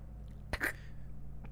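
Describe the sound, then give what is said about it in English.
A person chokes after swallowing wrong, letting out one short, sharp sputter, followed by quiet with a faint background hum and no talking. “No, I swallowed wrong.”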